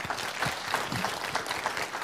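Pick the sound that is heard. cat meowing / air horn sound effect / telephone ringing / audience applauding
audience applauding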